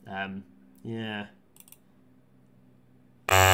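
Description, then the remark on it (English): Two short, harsh buzzer blasts sound one after the other, like a wrong-answer buzzer. A few soft clicks follow, then a sudden loud burst of noise cuts in at the end. “I should have got my buzzer out for this, shouldn't I?”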